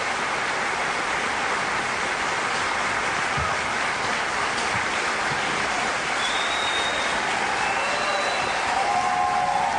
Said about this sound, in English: And the applause went on and on. It was one of several standing ovations that that Amash got last night.